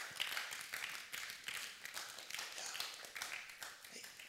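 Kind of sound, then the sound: crowd, audience clapping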